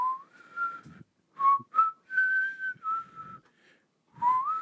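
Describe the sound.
Someone whistles in a random, tuneless way, imitating a man randomly whistling in a gas station at 2 a.m. in North Carolina: several short wavering phrases with brief pauses and audible breath between them, not a recognizable melody.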